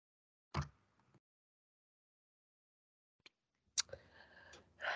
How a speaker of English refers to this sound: I was trying not to actually sneeze out loud, but then it didn't work.